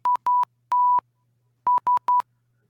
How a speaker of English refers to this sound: No, it was this. Which is SMS in Morse code. That was it. I got confused because it's been 18 years since I had that text tone.